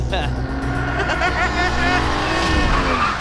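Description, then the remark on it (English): A taxi's engine roars loud, revving hard as the driver guns it onto the road shoulder, with tires squealing briefly over the steady, heavy motor noise. “He hits the shoulder, guns it.”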